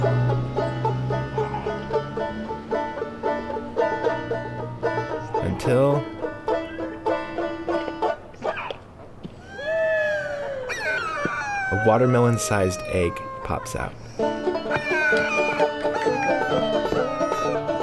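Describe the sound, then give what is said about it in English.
A performer playing a horned lizard in a neighborhood street routine lets out a series of rising and falling howling screams, squatting lower with each scream, loud, with a narrator speaking before and after the screeching. “The horned lizard is starting to look frantic now. Or is it determined? It squats down. With each scream, it squats lower.”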